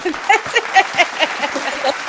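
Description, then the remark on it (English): A small group claps in a brisk, steady rhythm of about four beats a second, with sharp, fairly loud hits and faint voices mixed in underneath. “So just put your hands up and clap.”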